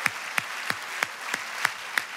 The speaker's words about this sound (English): Okay, so let's have applause for this questioner. She's very brave.